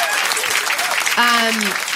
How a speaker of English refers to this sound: So let's give a round of applause for Thrive Market.